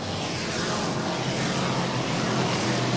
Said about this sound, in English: Beautiful looking race car. As we work on 78, the top guys all rolling through turns four as they come back to the line. 79 complete.